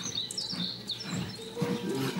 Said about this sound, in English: Oh, my phone is... there's an alarm going off in my phone.